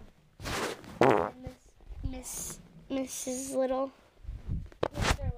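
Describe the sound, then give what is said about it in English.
A series of buzzy, sputtering fart noises, apparently blown by a person's mouth, comes in several short bursts, with brief breathy pauses between them. “Dad, you farted. You're gross.”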